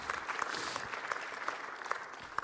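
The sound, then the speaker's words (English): An audience applauds together, a steady wash of many hands clapping at moderate loudness, with a few sharper claps standing out through the dense, continuous patter. “That's worth clapping for, because that's good news.”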